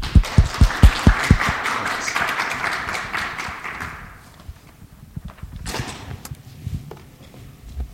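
Audience applause welcoming Professor Craig Watkins as speaker: a dense burst of many hands clapping that fades after about three seconds, leaving a few scattered claps and small knocks before it goes quiet.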